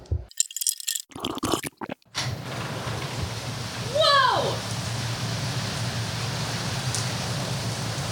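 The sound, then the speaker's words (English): Rain patters steadily on a roof and chimney, a dense, continuous hiss that starts abruptly after a couple of seconds of quieter voices. A brief rising-and-falling chirp cuts through midway. “I think it's raining.”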